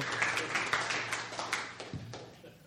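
An audience claps for the next person called up to speak, in a dense, steady burst of applause, many hands overlapping in a crackling wash that gradually thins and fades toward the end.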